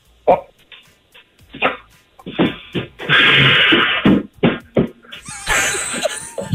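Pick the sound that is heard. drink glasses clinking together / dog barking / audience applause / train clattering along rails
dog barking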